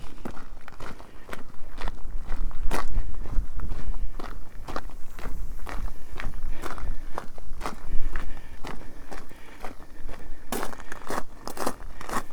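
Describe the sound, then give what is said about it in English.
Footsteps walking through the abandoned Dean Quarry, heading for Godrevy Cove: steady footsteps crunch over loose gravel and stone, a regular walking rhythm of sharp, gritty steps over a low rumbling background, with no one speaking. “Wandering through the abandoned Dean Quarry.”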